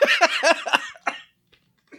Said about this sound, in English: Oh, I got a cough. I sense that. I'm sorry about that. Been out in the cold too long.